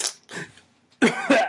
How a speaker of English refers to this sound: I coughed because I tried to do something with my face that didn't work.